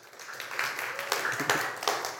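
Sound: round of applause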